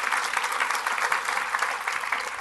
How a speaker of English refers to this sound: So thank you, guys. Big round of applause. Thank you.